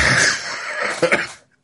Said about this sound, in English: That was me trying to laugh and then stumbling into a cough.